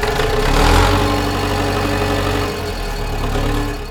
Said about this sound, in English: Dode fired up the tractor. He fastened a grappling hook over the ends of the threshold stone to drag it up out of the place. The stone had been ground deep into the clay. Once the hook bit into the limestone, Dode gunned the tractor.